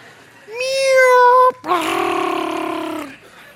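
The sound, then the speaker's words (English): A person imitates a small kitten's mew with two drawn-out vocal sounds: a thin, sustained cry followed after a brief gap by a longer, buzzier one. “God hears a little kitten.”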